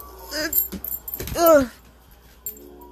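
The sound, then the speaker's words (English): A dog whimpers and whines in a couple of high, wavering cries, the longer one near the middle, after knocking her toy under a bed, then falls quiet apart from a brief clink near the end. “Oh my God, this dog just knocked her toy under the bed. Give me a second, because she's going to make a lot of noise if I don't get it.”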